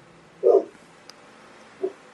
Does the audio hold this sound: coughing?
no